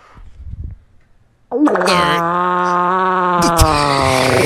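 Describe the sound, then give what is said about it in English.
After a low, muffled rumble, a woman's car engine is started and abruptly roars to life, holding a loud, steady, buzzing drone with a slight rising whine, continuous to the end. “We're going to let this woman's car fart carry us out on the episode.”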